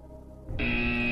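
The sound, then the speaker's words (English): A harsh game-show wrong-answer buzzer, in a quiz about naming the Vikings' three best defensive players, cuts in after a low murmur and holds as one loud, steady, rasping tone until the end. No one speaks. “I've got three names written down, but I struggled, and I'm not very confident I'm going to get this right before I hit three buzzers.”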